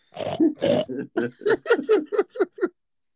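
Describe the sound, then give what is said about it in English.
A pig grunts and oinks in a quick burst of about a dozen squealy snorts, loud, each call shorter than the last before it stops abruptly. “Oh man, get the pig.”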